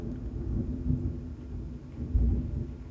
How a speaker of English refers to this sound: Thunder is roaring, y'all. Thunder is roaring.